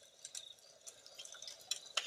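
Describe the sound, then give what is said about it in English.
A crackling campfire: faint, irregular sharp pops and snaps scattered over a soft hiss, with a couple of brighter cracks near the end. No voices. “Well, folks, hopefully that campfire sound really puts you in the mood for tonight's story.”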